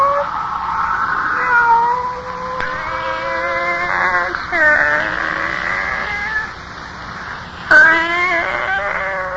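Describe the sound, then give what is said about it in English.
A pet cat named Kitty meows in a series of long, drawn-out, wavering cries, fairly loud, one sliding into the next over a faint steady hum, with no one talking. “Oh, it's you, Kitty. Barbara's pet.”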